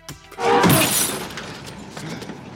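In a movie scene, a glass bottle thrown by Piper smashes against Frank's car with a sharp, loud crash, followed by a bright scatter of tinkling shards that fades into a lingering noisy tail.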